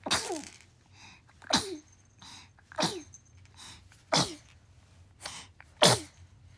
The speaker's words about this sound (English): Bless you.